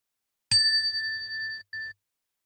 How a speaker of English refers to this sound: I'll ring the bell. Ring the bell.